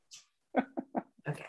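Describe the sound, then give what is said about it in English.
A white, fluffy dog named Murphy pants and snuffles, a quick breathy huff followed by a few short, throaty bursts in an uneven rhythm, fairly quiet with no talking. “It's my parents' dog, y'all. He is white and fluffy.”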